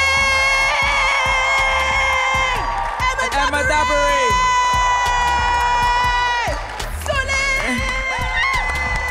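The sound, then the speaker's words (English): An audience claps and cheers loudly and continuously for a show's guests, with high-pitched whoops and excited shouts rising and falling over the dense, steady roar of applause. “Guys give a round of applause to our guests?”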